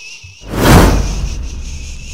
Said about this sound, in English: All right. Give me a swoosh.